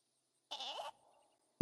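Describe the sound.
A single wavering, nasal bleat lasting under half a second, a person's voice imitating a goat, followed after a pause by a sudden loud burst at the very end.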